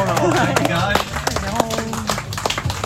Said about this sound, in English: Round of applause for both. Yay!